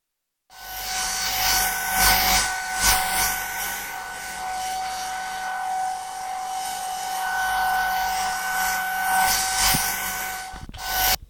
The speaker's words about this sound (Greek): Τώρα θα ακούσετε ένα πιστολάκι να γυρίζει γύρω από το κεφάλι σας.